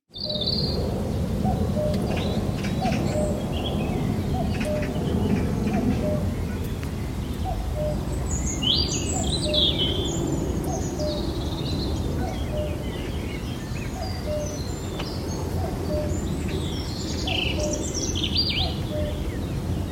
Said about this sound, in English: He says, here's the morning chorus I captured from my houseboat on the River Lee in East London.